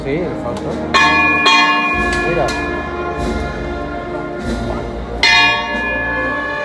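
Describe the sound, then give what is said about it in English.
A bell rings out in a few sharp, resonant strikes, each leaving a long ringing tail, over the low murmur of an outdoor crowd at a religious procession. The bell signals the procession to stop and the men carrying the tall float (trono) to lower it to the street. “And the ringing of the bell, signifies to stop the procession, to put the trono down on the ground so they can stop bearing the weight of it.”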